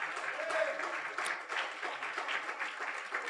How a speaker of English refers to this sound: Amen. You can give the Lord a round of applause.